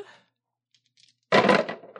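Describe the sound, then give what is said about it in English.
Six dice rattle briefly with a few faint clicks, then spill loudly onto a hard surface in a clattering burst that tumbles and settles within half a second. “you're going to roll your mind plus investigate. That's 6 dice.”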